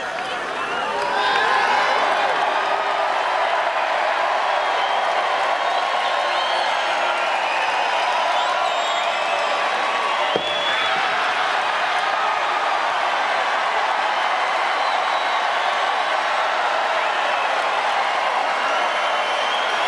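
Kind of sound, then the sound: crowd, crowd cheering and applauding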